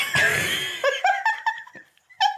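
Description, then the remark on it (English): A man's loud, rough belch from deep in his belly rumbles for about half a second, then several short, rhythmic bursts of laughter follow with a brief pause before a final laugh. “As I'm about to compliment and he just belches from the depths of his belly.”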